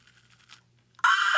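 A single loud, crisp crunch of a bite into fruit, made right into the microphone as ASMR, sharp and bright with a wet crackle, bursting in suddenly after a second of faint, quiet rustling.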